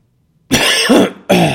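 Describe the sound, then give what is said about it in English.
Two loud coughs with no talking: a longer, rough first cough, then a brief pause and a second, sharper one. “I was trying to pause while I coughed.”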